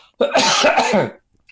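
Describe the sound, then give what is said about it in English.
A single loud cough, harsh and raspy with a throaty rumble, lasting about a second and followed by quiet. No one speaks around it. “I've got to do a cough, mate, pardon me.”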